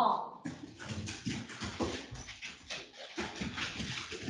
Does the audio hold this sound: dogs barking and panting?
yes